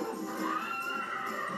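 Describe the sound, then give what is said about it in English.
A horse whinnies in a drawn-out, wavering neigh that rises and falls, in a horse-riding video game, over a steady game background bed, with no one talking. “Some galloping.”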